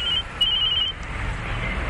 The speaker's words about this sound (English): Oh, there's a phone.